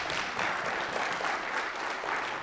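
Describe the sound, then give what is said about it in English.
A church audience applauds its media team steadily, many hands clapping in a dense, sustained wash of sound that holds at an even level throughout, with no voices standing out. “Also, everybody give a hand clap”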